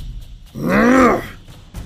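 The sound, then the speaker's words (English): A man's voice lets out a single drawn-out roar, rising and falling in pitch with a gravelly, strained tone, loud and alone for about a second. “He roars.”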